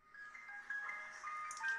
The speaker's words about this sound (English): Ice cream truck? The Mr. Softy truck. Aw. Isn't that cool?